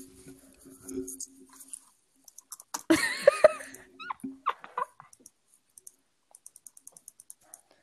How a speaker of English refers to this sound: Click something with your mouse.